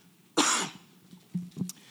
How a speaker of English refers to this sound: I was sick last week. I know my voice probably sounds a little rough. Please excuse the coughing. I was sick last week, but the Lord heals.